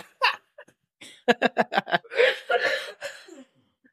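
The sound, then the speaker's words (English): A quick run of rhythmic laughing bursts breaks into a rough, breathy coughing fit from someone who has had a cough for three weeks, then trails off into a few faint wheezes and quiet. “I've had a cough for the last 3 weeks. You can't make me laugh.”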